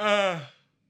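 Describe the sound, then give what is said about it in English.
A single loud yawn: a voiced, drawn-out exhale that slides downward in pitch, fades out after about half a second, and leaves silence behind. “I couldn't help but yawn because they said they're updating a few, select few of the clones.”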